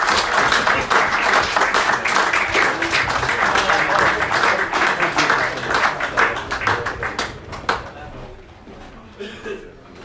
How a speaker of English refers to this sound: As we're going to wrap things up, I'm going to ask the chairman, Trevor Bull, to come and join us on stage to have a couple of words with us. So a big round of applause for Mr. Bull.